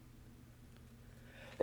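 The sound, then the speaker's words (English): A single short, sharp sneeze bursts out at the very end, louder than the quiet, steady background hum that fills the rest of the moment. “Bless you.”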